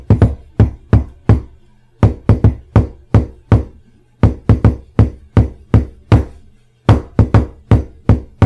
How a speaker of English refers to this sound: knocked his secret knock on the door, which included knocks to the rhythm of Happy Birthday to You